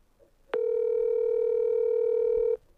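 phone call ringing tone

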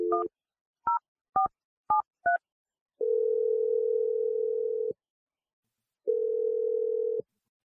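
telephone dial tone

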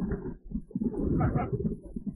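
bird calling

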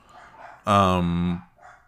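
dogs barking

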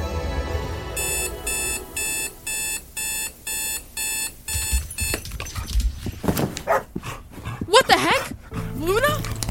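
dog barking

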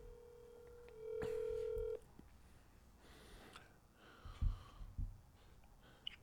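outgoing telephone call ringing

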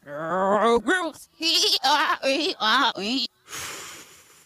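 goat bleating

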